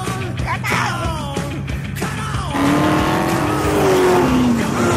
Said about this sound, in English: Okay, now they got cars, race cars.